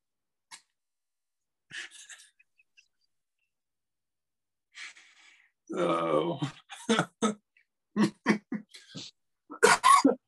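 A fit of coughing: several harsh, irregular coughs come in clusters after a quiet start, with a voiced, throaty groan in the middle and a final strong burst.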